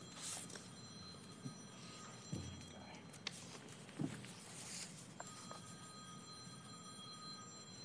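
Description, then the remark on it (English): A mobile phone rings with steady, high electronic tones, fairly faint in council chambers during a meeting, broken by a few soft thumps and shuffling noises. “please turn off your phone. It's the second time we've had a disruption in the chambers.”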